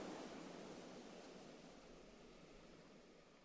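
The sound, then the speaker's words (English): A steady, broad wash of surf rushes and hisses without pause as waves crash up against rocks on the shore and droplets cascade back to foam, fading slightly toward the end. No voices are present. “The splash of water on the shore, as waves crash up against rocks and droplets cascade back to foam.”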